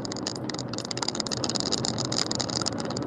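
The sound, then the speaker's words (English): A steady rumbling car engine runs continuously at a moderate level, with a rattly, noisy texture and no voices present throughout. “Okay, so you do hear the car.”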